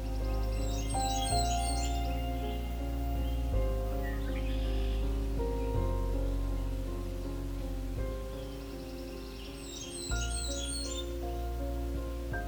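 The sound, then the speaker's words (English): A male Blackburnian warbler sings two bursts of rapid, very high-pitched repeated notes, sounding like "tisa, tisa, tisa," one early and one near the end, over a steady low droning hum. “The male songs are rapid and high-pitched, such as this song, which sounds like Tisa, Tisa, Tisa.”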